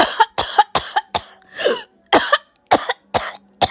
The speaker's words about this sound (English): Now cough 10 times.